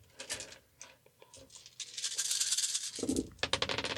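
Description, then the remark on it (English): Several dice clatter and rattle across a hard surface, a rapid run of sharp clicks that builds into a dense tumbling rattle and ends with a few scattered taps. “Oh, look at all those dice rolling away from me.”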